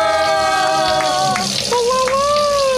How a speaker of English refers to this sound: All right, here we go. Let's spin that wheel.